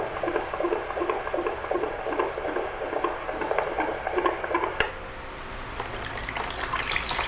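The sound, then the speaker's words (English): A fetal heart monitor picks up a baby's fast, galloping heartbeat, about 160 beats per minute, as rhythmic whooshing pulses over a watery hiss. About two-thirds of the way through it abruptly gives way to steadier static. “The baby's heart rate's a little high, like 160 instead of 140,”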